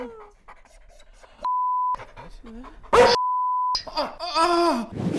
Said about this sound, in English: And if your dog barking wasn't already annoying enough, now you can make it swear, too. Introducing the cuss collar.